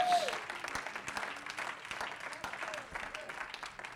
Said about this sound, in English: Oh, yeah, let's all clap our hands to the Lord.